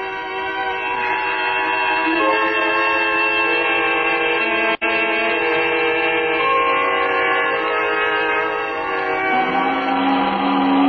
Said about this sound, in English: The whistle! The whistle! Time to go home. 6 o'clock. I slept right through and then the whistle woke me up. It woke me up.